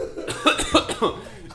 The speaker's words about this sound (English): …, the rosé connoisseur is coughing.